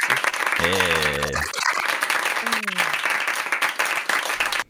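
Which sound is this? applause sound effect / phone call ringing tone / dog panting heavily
applause sound effect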